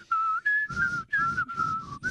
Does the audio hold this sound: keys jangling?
no